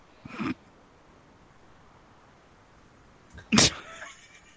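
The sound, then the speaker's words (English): A cat gives two short, grumpy vocal bursts a few seconds apart, the first brief and moderate, the second louder and harsher with a trailing edge, against quiet room tone and no talking. “Why is this such a weird little grumpy cat?”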